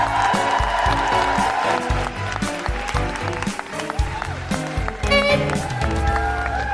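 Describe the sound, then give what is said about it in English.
A large audience at the Brighton Dome applauds and cheers steadily and loudly as comedian Zoe Lyons is introduced, the clapping blending with thumping, upbeat music playing throughout. “And now keep that applause going for the one, the only, the all over the telly.”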